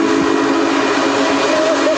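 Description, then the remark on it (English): Union Pacific Steam Locomotive 4014, called Big Boy, rolls past through Mansfield in a loud, steady roar of hiss and clatter, with a faint whistle-like tone rising briefly near the end. No one speaks. “tells a story about the big boy locomotive and its fuel”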